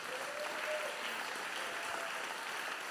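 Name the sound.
audience clapping hands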